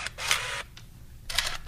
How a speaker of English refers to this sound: It sort of sounds cool, though. The shutter noise is kind of cool.